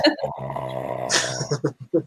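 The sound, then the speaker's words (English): A long, loud, low-pitched burp rumbles for over a second, followed by a few short vocal bursts. “that's a lot of burp in here.”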